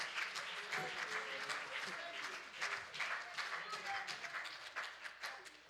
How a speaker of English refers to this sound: And when God shows up, there is nothing that is impossible for him. Why don't you clap your hands for a moment and just thank the Lord.